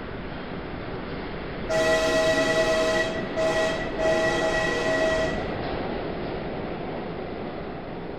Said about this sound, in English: I stood there watching the red light of his train disappear.